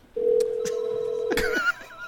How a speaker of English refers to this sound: Hey, that's weird. Oh, let's mute that. I could have sworn I heard a phone. That's weird.